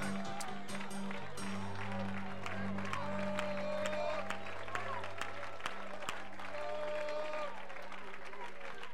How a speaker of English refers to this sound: Why don't we put our hands together one more time and give the Lord praise? Can we do that, everybody?